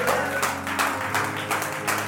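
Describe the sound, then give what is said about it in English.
An audience claps together in steady, dense applause, many hands beating at once with a few stronger surges, fairly loud and continuous throughout. “We clap even when the enemy is standing at the doorstep.”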